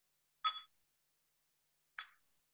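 A meditation bell is struck twice, about a second and a half apart. Each strike gives a bright metallic ping with a clear tone that fades quickly, with silence around it.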